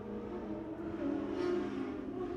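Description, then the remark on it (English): A motorcycle engine drones steadily in a low, buzzing tone, swelling slightly louder midway as it passes, then holding on without any voices. “Hold for motorcycle because that's not annoying. Can you hear that while you're on the motorcycle?”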